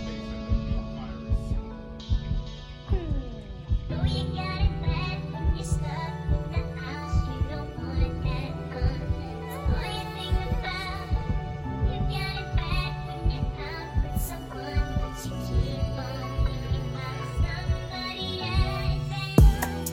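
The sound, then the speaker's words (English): A music beat built around a low, thumping heartbeat-style pulse that repeats steadily beneath layered synth tones, fairly loud and continuous throughout, with no one speaking. “Why you got the heartbeat?”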